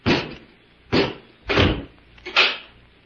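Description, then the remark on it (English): A door is shut with a heavy thud, followed by three more solid clunks at uneven intervals as it is bolted, fairly loud with no voices. “Robot One, close the door and bolt it.”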